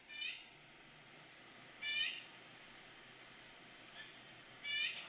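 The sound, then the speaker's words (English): A bird gives three short, high, harmonic calls spaced a couple of seconds apart, with a fainter one in between, over a steady low hiss of background noise, played back from a recorded video. “Here's a better video of the bird.”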